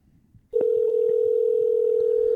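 A steady, unbroken telephone dial tone as a call is placed to a friend, starting abruptly after a brief quiet murmur and holding at one even pitch, loud and continuous, with faint low rumbling beneath it.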